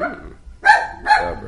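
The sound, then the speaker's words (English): A female dog barks twice in quick succession, two sharp, bright barks about half a second apart, clear with no one speaking over them. “The dog really liked that. Yeah, dog likes Kamara.”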